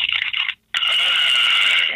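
The wheels of a toy bus, like a Volkswagen van, are rubbed and rolled, giving a shrill, wavering scraping squeal. A short burst cuts off, then after a brief silence a longer, steady screech continues to the end.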